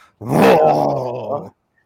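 A single loud, drawn-out dog vocalization, a growling bark that holds for over a second before cutting off, close up with no talking around it.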